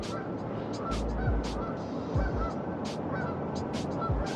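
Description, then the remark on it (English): Distant Canada geese honk loudly and repeatedly in a loose, overlapping chorus, their calls carrying over a steady wash of outdoor background noise with a few low thumps. “It sounds like there are some Canadian geese down there.”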